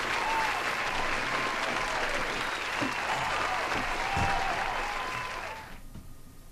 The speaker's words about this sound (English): So there you go. Once again, a nice round of applause for our winner.